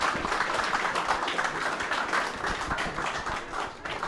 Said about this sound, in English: Would you give her a nice round of applause, ladies and gentlemen?